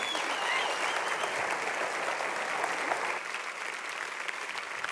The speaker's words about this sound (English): I mean, that's a very nice applause, Westside, but I mean, seriously, for who they are and what they do day in and day out, I think this, if you're able, let's stand and let's just go crazy and say thank you so much,